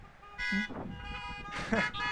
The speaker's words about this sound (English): It's the reason we can look beyond the unpleasantness of our current circumstances and have joy and have hope and honk our horns with it for an amen when we're happy and have joy because we know we are secure in Christ.